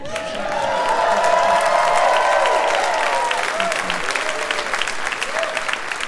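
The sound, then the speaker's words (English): A crowd bursts into sustained applause for a comedian telling jokes, dense steady clapping lasting several seconds, with rising whoops and cheers riding over it early on before the clapping gradually thins. “And I am here, thank you, on the pretense of telling jokes, but I really just want to be thanked and applauded.”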